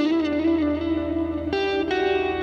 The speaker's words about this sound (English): Oh, that hum is getting worse. That's not in the microphone, is it? No.